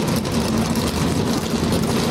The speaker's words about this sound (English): Drivers, start your engines. The engines come to life, 36 in all. It's going to be a great day here at the Kansas Speedway.